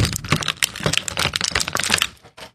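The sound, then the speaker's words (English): A package is handled and shaken, giving a busy, irregular rattle of sharp clicks and crinkles that runs steadily for a couple of seconds, with no one speaking. “It sounded like somebody was trying to build a dog cage and not doing very well.”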